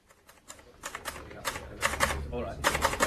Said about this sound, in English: He was typing out his report.